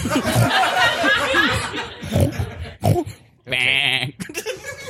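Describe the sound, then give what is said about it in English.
A sheep bleats in a long, wavering cry at the start, then gives a shorter, sharp bleat near the end, with a quick burst of voices or laughter between them. “That's a sheep. Look out the window again. That's a sheep that thinks it's a sheep.”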